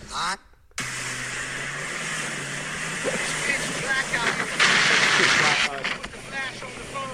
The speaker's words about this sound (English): So he's on like a motorboat, jet ski. Oh, he's actually lost at sea in a jet ski.